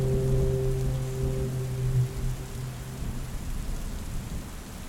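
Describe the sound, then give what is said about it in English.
Steady, hissing rain falls in the evening with a deep rumble of thunder underneath, while a low droning foghorn from the lighthouse at New Era, a few kilometers down the road, lingers for the first half before fading out. “Well, I'll use the rain to clear, to wash the remaining blood off my hands and then come inside for dinner.”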